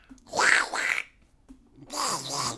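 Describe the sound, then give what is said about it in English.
A person imitates the voice of the cartoon duck Donald Duck in two raspy, buzzy bursts of squawking, nasal and high-pitched, with a short pause between them. “Okay, I'm gonna call it here for Donald Duck practice.”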